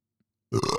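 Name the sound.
burp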